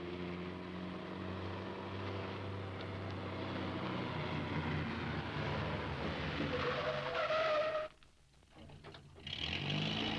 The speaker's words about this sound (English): The car screeched to a halt. It turned around and drove back down the hill and entered the roadhouse car park.